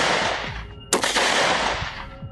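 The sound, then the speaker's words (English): Gunshots ring out over a dense, roaring wash of noise: one sharp, loud crack stands out near the middle, with several duller, lower thumps scattered before and after, as a killer fires into a parked car at the people inside. No one speaks. “Without a word, the killer shined a flashlight into the car and began firing.”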